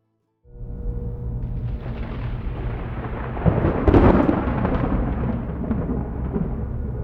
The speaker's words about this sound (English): Deputy Waylon Dupree winced when the first wave of thunder shook his patrol car. It was low and rumbling